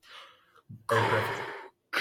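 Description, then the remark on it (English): A voice imitates Darth Vader's heavy, mechanical respirator breathing: a soft breath, then a long, loud, raspy hissing exhale and the start of another, with no other speech. “Oh, I thought you were talking about his breathing for a second.”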